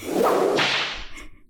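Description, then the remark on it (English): A single whip crack sound effect: a quick rising swish snaps into a sharp, bright crack that rings out and fades over about a second, loud with no voices. “All right, whip noise once more.”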